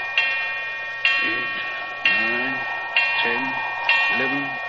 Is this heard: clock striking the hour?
yes